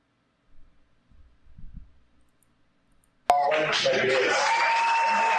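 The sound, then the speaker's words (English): After a few seconds of faint low murmuring, loud applause from an audience suddenly erupts at a speech, applauding the speaker for saying that white people need reparations, and continues steadily, a dense wash of clapping with some cheering mixed in. “They're applauding him for saying that white people need reparations.”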